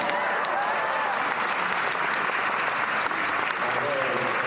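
audience applause

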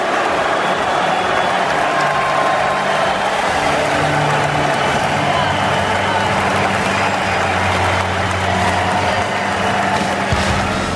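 arena crowd booing

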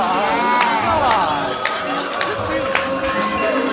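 audience applause and cheering

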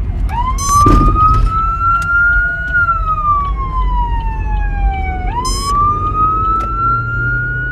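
ambulance siren passing

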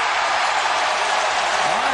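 basketball arena crowd cheering

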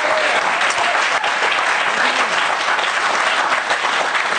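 audience clapping

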